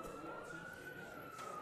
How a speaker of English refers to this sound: When I arrived at the corner of Brookside and Sierra Madre, the usually quiet intersection was filled with people, and an ambulance was just pulling away.